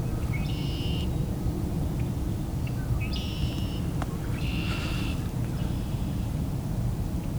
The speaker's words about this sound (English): The red-winged blackbird.